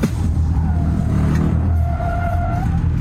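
A rear-wheel drive premium model car accelerates hard in the rain and drifts, with a loud, steady engine roar while its tires squeal in a wavering, high whine that rises and falls in two stretches over the rumble.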